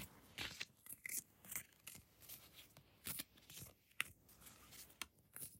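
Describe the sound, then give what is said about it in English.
A deck of cards being shuffled, a steady run of quick papery riffles and soft slaps repeating for several seconds with no talking. “I'm shuffling now.”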